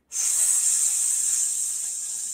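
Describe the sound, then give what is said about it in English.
A person makes a long, steady hissing "sss" sound, imitating a snake, while holding the breath during a meditation breathing exercise. The sustained hiss begins abruptly and holds at an even level for about two seconds, with no talking. “And once it's at the crown chakra, we're going to hold the breath and orally make the sound of an S, the serpent, the snake.”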